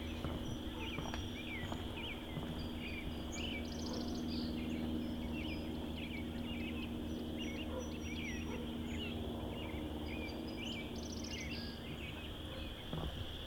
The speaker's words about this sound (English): Probably several thousand chorus frogs.